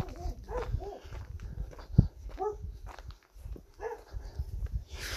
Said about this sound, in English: There they are. Shouty dogs.